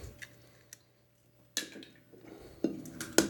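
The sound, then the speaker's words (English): A few sharp, bright taps of two eggs being cracked against a glass rim, spaced unevenly, with faint clicks at first and then three louder cracks toward the end. No one speaks. “You're going to take these two eggs. Okay. Crack them on the glass. Plop it in there.”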